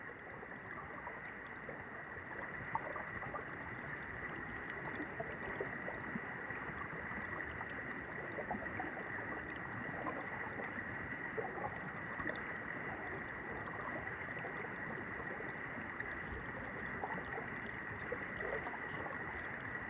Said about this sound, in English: Let's take a moment to listen deeply to the river. Notice how in this particular spot, it creates a deep throbbing sound as the water laps over the rocks.